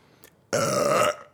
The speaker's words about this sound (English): Do you burp every single time I yawn? Maybe instead of yawning back, I burp back.